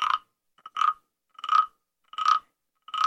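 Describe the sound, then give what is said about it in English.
A frog croaks in a steady, repeating rhythm, about five raspy calls in three seconds with brief silences between them, fairly loud, with no voices. “I know what's on the other side of rainbows, and that's frogs, more frogs, right? And ribbit, I've got mine right here.”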